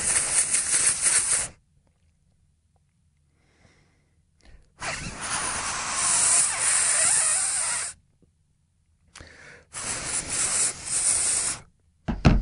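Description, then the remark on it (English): Someone blows hard into the charging port of a phone that got wet in a bath, trying to clear the water out, in several loud, breathy hissing bursts, one long and steady, separated by short silent pauses. No talking. “It's got in through that little opening, hasn't it? The charging opening. Maybe if I blow in there.”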